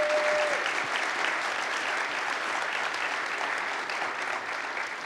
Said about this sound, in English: All right, well, thank you so much for joining me today here on this stage. Can we get a round of applause for our guests, please?